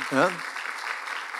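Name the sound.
audience applause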